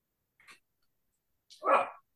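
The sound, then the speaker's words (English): A dog gives a soft, short huff followed by a single louder, fuller bark, with silence in between and no one talking. “He's barking, pick, damn it, pick.”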